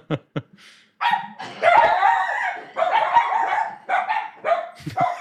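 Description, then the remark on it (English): A dog barks excitedly after someone rang the doorbell, in rapid, overlapping bursts with high yelps and whines, loud and continuous for several seconds after two short sharp sounds at the start. No one speaks. “The welcome brigade. Yeah, someone rang the doorbell.”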